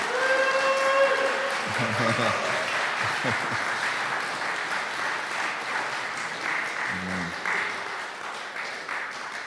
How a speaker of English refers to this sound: Let all men just, can we just clap our hands and appreciate this morning? Come on, guys.